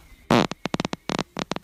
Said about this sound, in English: farts are always creeping up on the soundboard, dude. That's one fart. That's one fart.